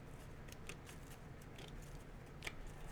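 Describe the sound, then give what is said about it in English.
Tarot cards being shuffled for a love reading, a quiet run of soft, papery flicks and riffling clicks at an uneven pace over a faint low hum, with no one speaking. “For those of you, and while I'm shuffling here,”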